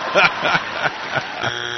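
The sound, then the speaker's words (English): A harsh, steady game-show buzzer for a wrong answer blares at the end, cutting in after a stretch of lively talk and continuing as a flat, droning tone. “Yeah, he got buzzed.”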